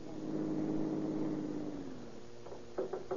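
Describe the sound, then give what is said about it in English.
A car engine hums steadily, its pitch sinking as the car, driven over a field in a lonely area, slows and stops at the bottom of a steep hill, followed by a few short mechanical knocks and clunks. “At the bottom of the hill, he stops his car and waits for Captain Chitwood.”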